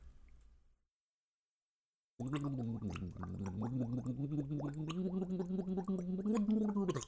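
A brief quiet lead-in, then about five seconds of loud, bubbly gargling of the national anthem, the wavering, sung melody rising and falling like a tune through churning water.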